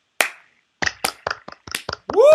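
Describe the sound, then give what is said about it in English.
Members of a research team clap in short, uneven bursts: one loud crack, a pause, then a quick scatter of sharp claps. A rising cheer-like voice breaks in at the very end. “That was our research team clapping.”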